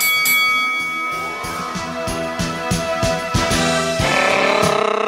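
A boxing ring bell clangs repeatedly in quick, steady strikes, its bright metallic tones ringing and overlapping loudly.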